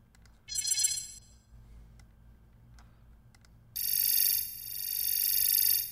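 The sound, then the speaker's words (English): A bright, buzzy synth tone blips briefly, then after a pause returns as a loud sustained electronic tone that dips slightly and swells back up, over a low steady hum; the swell is made by drawing an envelope in a standalone app. “So if I wanted to, like, do a swell... do like so.”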